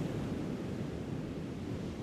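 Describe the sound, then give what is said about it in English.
Steady, rumbling wind blended with the constant wash of surf on a beach, even in loudness throughout, with no voices; the wind has calmed a bit and the rain has passed. “The wind has calmed a bit and the rain seems to have gone.”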